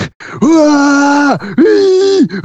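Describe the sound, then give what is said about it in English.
In a film clip, actor Reb Brown lets out two long, loud, strained screams with a sharp break between them, each holding a steady pitch before dropping off, followed by a short grunting catch. “And all of the screams that Reb Brown does.”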